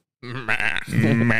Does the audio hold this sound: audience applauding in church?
no